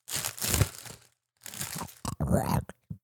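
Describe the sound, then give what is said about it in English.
Loud crinkling of a candy wrapper being opened, coming in several irregular bursts with a short pause between them. “Here, I'm going to open one of these things.”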